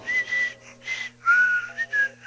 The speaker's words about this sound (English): his whistling nostril will soothe your psyche and comfort your soul